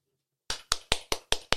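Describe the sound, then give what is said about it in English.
A single person claps for himself six times in a quick, steady rhythm after a short silence, each clap sharp, bright and fairly loud, with no talking over it. “I give my own self claps because I don't need your clap.”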